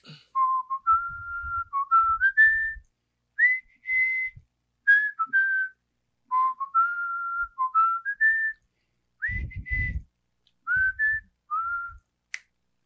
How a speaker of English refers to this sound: I'm going to whistle a tune, and I want to see if you know it.